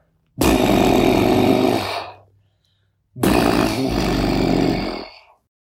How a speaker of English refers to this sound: And just as she was about to finish her sentence, they heard a noise. like a really loud horn, deep, almost like a foghorn. It went.